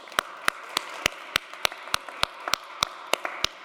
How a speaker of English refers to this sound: So for you all who are prepared today, who have exited your homes, who came out in the cold to worship together, to be in community together, let's give yourselves a round of applause.